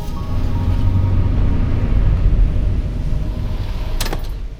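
A loud, steady low rumble of a car driving, continuous engine and road noise throughout, with a brief sharp click or clatter near the end.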